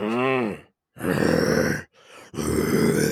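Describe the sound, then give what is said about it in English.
A man's voice imitates a bear roar in three loud, raspy growling bursts separated by short pauses, the first starting with a pitched vocal wail before turning gravelly. “Good job on the roar.”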